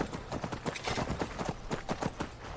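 Horse hooves clip-clop in a quick, steady rhythm, each sharp knock clear, with a faint background hum and no voices.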